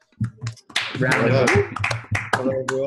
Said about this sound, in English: I have to say, this is only the second time on the show that we've ever had an applause.